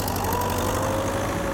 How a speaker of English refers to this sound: And no one has noticed until the hackers activate some malware. And they send a little command that tells all the engines connected to the network to start revving.